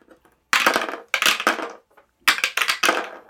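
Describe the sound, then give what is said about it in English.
Dice rattle and tumble across a hard tabletop in four quick bursts of bright clicking clatter, each settling before the next throw, with no voices. “All right, well, let's grab dice, because I got questions.”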